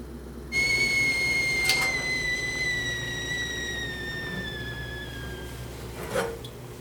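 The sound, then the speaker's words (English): A kettle whistles steadily as water boils for a cup of tea, a sustained shrill tone with several harmonics that slowly drifts lower in pitch, clear, with no talking. “I boiled the water twice just to make it safe.”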